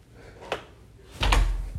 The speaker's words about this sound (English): I'm gonna close my door. I forgot to do that.